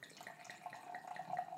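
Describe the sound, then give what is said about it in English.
Red wine pours steadily into a glass for a second or two, a soft trickling gurgle with a faint ringing tone as the glass fills, quiet and with no talking. “Pour and a taste?”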